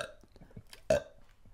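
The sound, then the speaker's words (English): A single short, loud burp erupts about midway through from a person asked to burp on the spot, preceded and followed by low, quiet rumbling background noise. “Can you burp? Just burp right now.”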